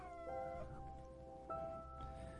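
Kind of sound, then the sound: animal, dog barking and howling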